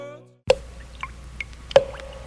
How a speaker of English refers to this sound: The sound you hear is dripping blood. This is the start of Black Sunday.